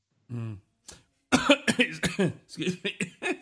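A loud coughing fit: after a brief throaty vocal sound, a rapid string of about ten harsh coughs comes in quick uneven bursts, with no talking.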